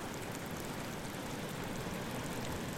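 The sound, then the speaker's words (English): Steady, rushing water washes and swirls continuously around a boat at low volume, a constant wet wash with no distinct thumps or voices standing out. “I can hear the boat thumping and the water washing around it.”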